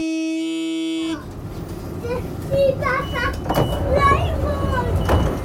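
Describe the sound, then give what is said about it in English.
A steady electric hum from an idling train that has terminated, its doors open, gives way to a busy platform's echoing rumble, with voices chattering and the occasional clunk of doors. “There's a train there. That's terminated. Doors are open.”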